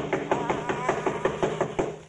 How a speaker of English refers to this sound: I'll do the knocking. Doesn't seem to hear us. Oh, he'll hear me.